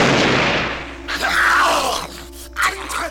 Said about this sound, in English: The gunshot's probably a context clue only if you've seen this movie.